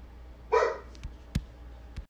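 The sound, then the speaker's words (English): A single dog bark rings out, followed by a few sharp knocks or thumps, otherwise quiet. “Hey! Don't be barking.”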